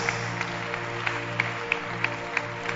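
An audience clapping their hands together for a woman in a steady, even rhythm, roughly three claps a second, with sharp unison beats standing out over a continuous wash of many hands.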